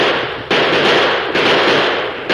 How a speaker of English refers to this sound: At the first crack of the six guns, the Apaches whirled in confusion.